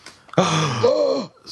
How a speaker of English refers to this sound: What was that? Harmonized gasps right there.